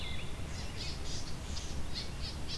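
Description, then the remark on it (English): A swamp sparrow's ringing trill: a steady series of repeated bright notes at an even pace over a low background rumble, with no talking. “So it's that kind of ringing trill that is the swamp sparrow.”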